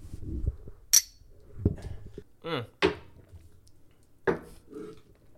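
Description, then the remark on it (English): Glasses clink together in a toast, several sharp, bright knocks close to the microphone at irregular intervals, with a faint clatter and a brief ringing tone between them. “Cheers to the first episode. Cheers. Cheers. Wait, clink it in the mic.”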